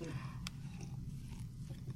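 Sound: sipping champagne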